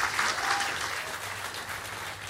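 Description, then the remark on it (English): An audience claps steadily, a dense wash of many hands with no gaps, holding an even, moderately loud level throughout. “Of course, the lefties in the audience are clapping.”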